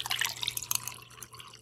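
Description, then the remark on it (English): Widow Jane rye, Campari and Carpano Antica sweet vermouth are poured into a mixing glass for a cocktail, a quick run of bright, splashy trickles and drips that thins out and fades after about a second, with no one speaking and a faint steady hum underneath. “All right, that's all in the mixing glass, and I'm just going to give this a good stir.”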